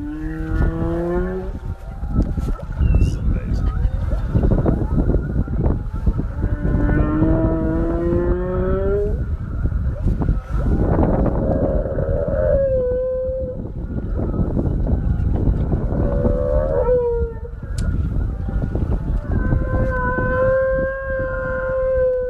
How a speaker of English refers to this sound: Oh, so here's some whale song that you captured during your recent trip. It's about 20 seconds. Just listen.